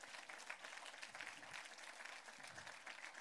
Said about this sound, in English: And this is your team, you guys. Give these guys a huge round of applause, because this is your team.